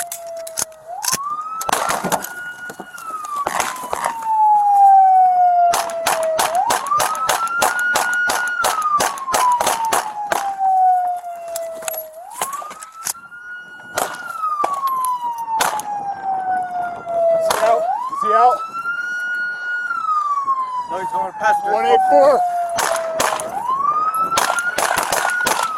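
A loud police siren wails in slow rising-and-falling cycles as police chase a suspect in a car, punctuated throughout by clusters of sharp cracking bangs and rattles.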